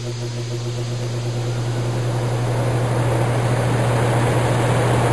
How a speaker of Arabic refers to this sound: نعم، صوت جهاز التكييف يعتبر من الأصوات المريحة المهيئة للنوم، والسبب في ذلك لأنه يعتبر من الضوضاء البيضاء